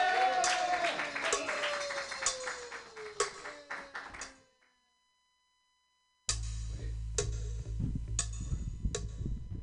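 Scattered hand clapping from a small group, sharp irregular claps under a falling tone, then a short silence before more sparse clapping resumes over a low rumble.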